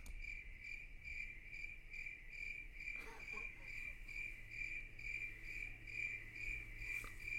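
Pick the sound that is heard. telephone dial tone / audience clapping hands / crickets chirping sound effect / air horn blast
crickets chirping sound effect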